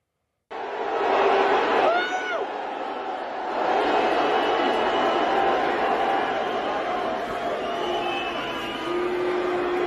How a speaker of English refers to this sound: All those people are booing. I'm just pointing out the obvious.